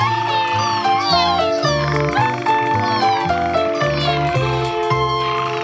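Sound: kitten meowing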